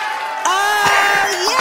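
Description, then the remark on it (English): A loud, steady burst of crowd cheering with many overlapping voices and rising whoops, sustained for under two seconds like a short sound effect. “And there's a crowd. I love it.”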